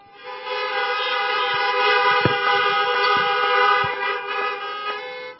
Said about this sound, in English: Honk for me again.